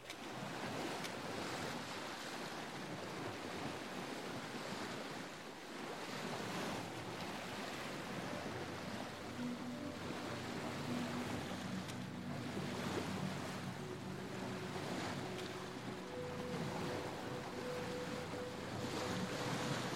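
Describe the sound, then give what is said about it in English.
A boat pushes steadily through rolling ocean waves as a woman steers it towards the shore, with constant loud surf and wind buffeting the microphone, and a faint engine hum emerging in the second half. No one speaks. “A woman with the long black hair begins to steer the boat towards the shore.”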